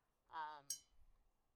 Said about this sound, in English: Aside from the planner, wow, that's really loud, I just realized. I'm clicking my water bottle because that's how I, like, keep myself on track.